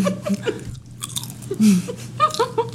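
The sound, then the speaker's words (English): Crisp crunching of a Chesapeake Bay crab spice flavored potato chip followed by wet, open-mouthed chewing, with irregular bursts of crackle and a low steady hum underneath. “That was a good crunch.”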